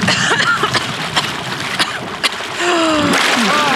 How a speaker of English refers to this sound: There's something down there. Just swim. We have to get out of the water.